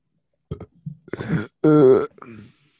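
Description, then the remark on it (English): A loud burp into the microphone: a few short guttural croaks lead into one long, drawn-out belch with a rough, throaty tone, then it fades out. “This nigga's over here burping in the mic.”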